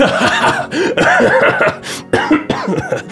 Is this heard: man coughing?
yes